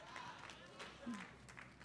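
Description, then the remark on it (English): An audience claps in a steady, dense patter that fills the room, with scattered voices calling out underneath; the applause is moderately soft. “Now, you clapping, but if I was you, I wouldn't be clapping because I'd rather be led than...”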